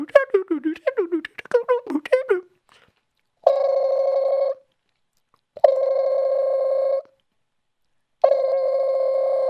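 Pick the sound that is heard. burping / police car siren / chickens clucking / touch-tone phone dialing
touch-tone phone dialing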